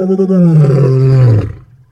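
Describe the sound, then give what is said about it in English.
A lion gives one loud, deep roar lasting over a second, its low rumbling tone gradually dropping in pitch before cutting off into near silence. “Well, let's take a listen and see just how loud lion roars can get.”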